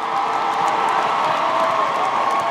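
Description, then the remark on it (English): A crowd bursts into steady, loud applause for all the competing teams before the judges pick a winner, mixed with cheers and a few whoops, a dense, sustained roar of clapping and voices with no one speaking over it. “Listen, let's give each and every one of them a great round of applause right now, right now.”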